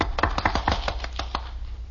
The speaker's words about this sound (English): Now you have to applaud. Okay, we applaud.